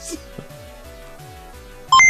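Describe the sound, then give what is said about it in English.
Synthetic beeps and boops from an activated calculating computer: a steady electronic hum with repeated descending blips in a regular rhythm, ending in a burst of loud, bright, high-pitched beeps. “Calculating computer activated. Just like that. Computers. Beeps. Space! Boops.”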